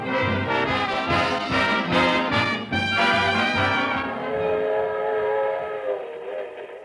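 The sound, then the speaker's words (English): A train rumbles at a suburban railroad station, a loud, sustained whistle chord sounding over rhythmic chugging that eases after a few seconds; no one speaks. “A suburban railroad station. 2 men go into the smoking car.”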